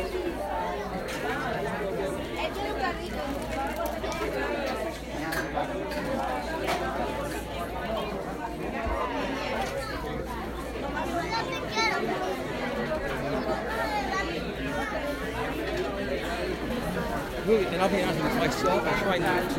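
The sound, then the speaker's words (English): Steady indoor hubbub of many overlapping voices, chatter and movement: the normal everyday bustle inside a Catholic Charities facility. It holds a constant, moderately loud level, with no single voice standing out. “And what you hear now is just the normal rustle and bustle that happens every day inside the facility, and you will actually hear an audio of me inside on location.”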